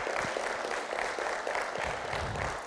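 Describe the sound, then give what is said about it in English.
A church crowd applauds the Prince of Peace steadily, many hands clapping together in a dense, even wash of sound that holds at a constant loudness throughout, with no voices standing out. “Yeah, come on, give him a good round of applause.”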